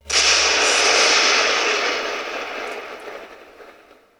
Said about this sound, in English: And it was at that very moment that they were struck by lightning.